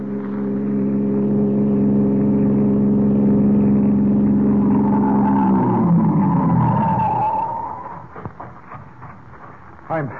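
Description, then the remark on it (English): A passing car on a road hums steadily, then its engine pitch drops as it brakes, with a faint tire squeal, and idles to a stop, followed by a few small clicks and knocks. “The police captain, left unconscious in the bushes at the side of the road, has recovered sufficiently to stagger to his feet and attempt to flag a passing car.”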